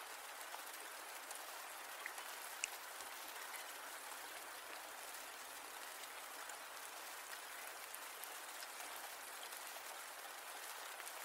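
Steady rain falls in a continuous hiss, with a dense patter of drops and a few sharper ticks standing out now and then. The sound stays even and fairly soft throughout, with no voices.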